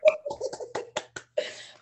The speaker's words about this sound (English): Hey. Give you a round of applause, ladies and gentlemen. Yes.